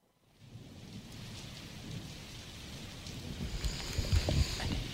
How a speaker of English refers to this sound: Oh, soothing rain back? Sound effect. It's not raining.